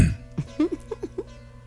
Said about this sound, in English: Slurping your coffee.